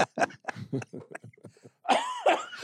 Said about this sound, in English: Dude, cough. Nigga, get that out of there. I'm telling you, I can't.